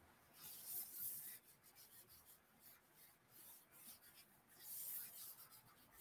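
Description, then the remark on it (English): Soft, dry scratching of a pencil, used by its wrong side, moving across paper, with brief rubbing strokes that swell and fade in an irregular rhythm, quiet with no talking. “Oh, I'm using the wrong side of the pencil again, you guys.”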